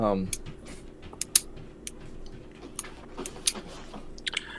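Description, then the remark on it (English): A pen clicking repeatedly in an irregular pattern, sharp crisp ticks, some in quick pairs, over a low steady hum, with a brief murmur of voice at the start. “I can hear you clicking your pen.”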